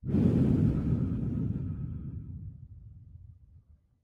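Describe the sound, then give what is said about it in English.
A long, slow, deep cleansing breath blown out through pursed lips as if through a straw, airy, steady at first then gradually fading away over a few seconds, with no talking. “Hold just for a moment and breathe out like we're breathing out through a straw.”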